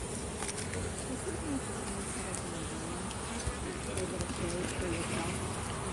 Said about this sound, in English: Wow, look at all those bees. Wow, that's a lot of bees. Make sure the queen's not in there, right?